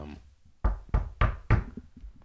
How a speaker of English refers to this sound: Who's that? Oh my god. Oh, it's somebody. He's got very loud footsteps.